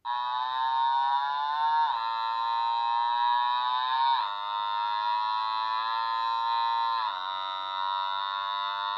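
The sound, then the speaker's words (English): A synthesized engine sound effect made with an automaton drones steadily and loudly for the whole stretch, a buzzy harmonic hum with brief hitches in its tone every couple of seconds. No one speaks. “A random engine.”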